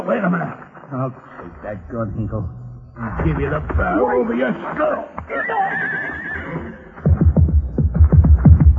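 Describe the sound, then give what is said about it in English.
A saddled horse whinnies with a shaky, rising-and-falling call as horses are led over, followed by more neighing and snorting amid voices, with heavier low thumps near the end that suggest hooves moving. “he's leading our horses.”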